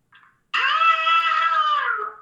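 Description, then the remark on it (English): A mountain lion's scream: one long, loud, piercing wail lasting well over a second, rich in harmonics and sliding slightly downward, preceded by a brief faint chirp. No voices are heard. “It sounds like somebody screaming for their life.”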